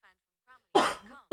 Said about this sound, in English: Now … is coughing over there